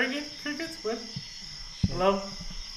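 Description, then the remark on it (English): A steady, high-pitched drone of crickets chirping runs continuously in the background while voices talk over it in the foreground. “Crickets, what?”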